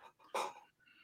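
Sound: sneeze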